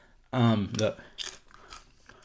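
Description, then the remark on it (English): A brief voiced sound, then a few sharp, dry crunches of someone chewing almonds, spaced roughly half a second apart. “Like if we had an actual producer, they'd be like, dude, you can't eat almonds. They're crunchy. They fuck up the show.”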